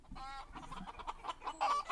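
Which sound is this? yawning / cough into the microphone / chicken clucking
chicken clucking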